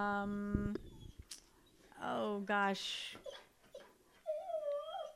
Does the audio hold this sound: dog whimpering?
yes